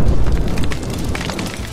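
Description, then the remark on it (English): A deep explosion boom with a heavy low-end rumble and crackling debris, loud, sustaining and slowly fading over under two seconds with no voices. “During the 18th century, or 1700s, Mexican silver miners would wrap gunpowder in paper and stick it between the rocks that they needed to blow up.”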